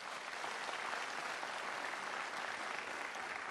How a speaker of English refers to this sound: So if y'all would, please, just give them a round of applause.